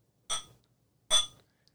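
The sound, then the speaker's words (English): Two beer glasses clink together in a toast, two separate bright, ringing taps under a second apart, each fading quickly. No one speaks. “Thank you, Elizabeth Brewing Company. Cheers. Cheers.”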